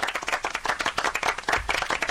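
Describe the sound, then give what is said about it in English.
A round of applause from a small crowd, dense overlapping hand claps at a steady level throughout, moderately loud, with no voices over it. “And that's earned me a round of applause.”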